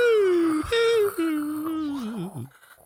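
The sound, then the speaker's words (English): A person voices a drawn-out, wavering hoot meant to imitate an owl. It slides slowly downward in pitch with a couple of brief breaks, then trails off into a shaky fade. “I can't make an owl sound. Classic owl noise.”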